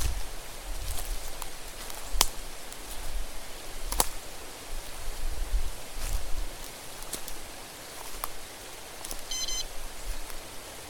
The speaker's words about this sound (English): Now do you hear it? Is that running water? More like falling.